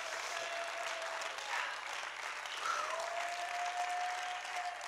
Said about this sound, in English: Oh, clap your hands and rejoice.